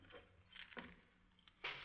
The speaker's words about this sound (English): Auto keys.